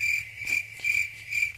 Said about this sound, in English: Hey, I ain't like the damn crickets. I ain't never been cricket worthy.